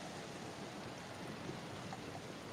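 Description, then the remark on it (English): Steady heavy rain from a storm hisses in a dense, even wash with no breaks or voices, holding at a constant moderate level throughout. “The heavy rain will continue to pound.”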